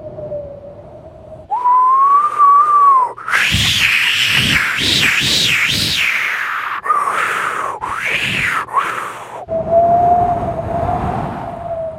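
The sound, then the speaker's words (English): Storm winds pick up around a sailing boat at sea, with a whistling howl, steady at first, then surging into loud, rushing gusts whose pitch swells and falls repeatedly before settling back to a thin, steady whine. “And sure enough, the winds began picking up.”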